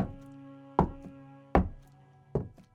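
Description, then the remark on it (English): Three heavy, evenly spaced footsteps thud across a wooden floor at a slow, deliberate pace, over a low steady background drone. “But just then, I heard footsteps.”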